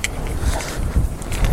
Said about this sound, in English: Sorry, I'm getting everything back on because I got back in the car and everything's all disassembled. Right, keys.